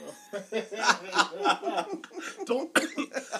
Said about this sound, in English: Choke. Coronavirus cough. Choke.